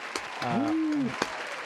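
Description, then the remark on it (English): A short burst of applause, a steady rush of clapping with a couple of sharper claps, while a rising-then-falling whoop or cheer sounds over it in the middle. “But round of applause for all these guys.”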